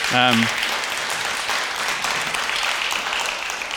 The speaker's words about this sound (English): And also a crew you probably don't even know almost exists is the gardening crew. So a round of applause for the gardening crew.